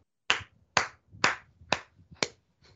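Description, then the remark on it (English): A short, slow round of applause: about six sharp, crisp hand claps in a steady rhythm roughly half a second apart, the last one softer, with no voices. “All right, you get a round of applause.”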